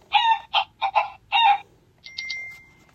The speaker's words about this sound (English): Before long, Clarabelle's chickens come out of the tall grass and cluck cluck along.